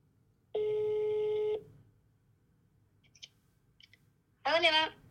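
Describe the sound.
A phone call being placed to a woman: a steady electronic ringing tone sounds for about a second, followed by a few faint clicks, then a voice briefly answers.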